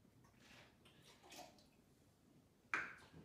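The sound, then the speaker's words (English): A soft, thin pour of about an ounce of agave syrup, thinned with hot water, trickles into a cocktail shaker, followed by a single sharp knock or clink near the end. No one speaks. “And I'm gonna drop in an ounce of agave syrup I threw together here.”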